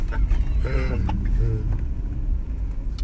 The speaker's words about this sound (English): We got a loose dog. She doesn't know where she's going. She's going back across, dude. She's in heat.